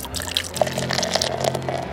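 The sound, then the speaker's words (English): Trump root beer, made on a Brewmaster, being poured into a glass, a steady gurgling stream with bright fizzy splashes and a few distinct drips, lasting a couple of seconds with no talking. “Yeah, I am pouring it for you right now.”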